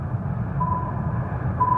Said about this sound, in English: I maneuver around more sonar beeps and make it to the seventh location.